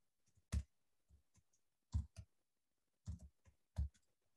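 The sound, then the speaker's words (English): Quiet computer keyboard typing: a handful of sharp, irregular key clicks with short pauses between bursts, a few strokes noticeably harder than the rest, with no talking. “Like I messed up on my typing, so I don't like my keyboard's too far to.”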